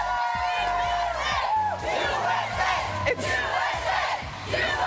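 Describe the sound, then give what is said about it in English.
A large crowd of fans cheers and applauds Olympic gymnasts, including Simone Biles, back from Tokyo, in a loud, continuous roar, with many overlapping voices shouting and whooping throughout. “Well, they are getting the applause they could imagine in their minds.”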